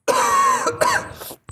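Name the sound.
coughing fit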